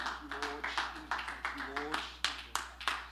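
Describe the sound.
An audience claps their hands at the close of a prayer, in a steady, fairly quick rhythm, about ten sharp claps in three seconds, with some voices sounding underneath.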